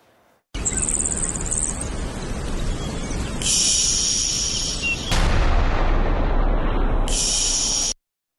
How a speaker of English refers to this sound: But there has been a big push for battleground secrecy ahead of the planned counteroffensive, including a new video with Ukrainian troops shooting before the F-16s roar in. Watch.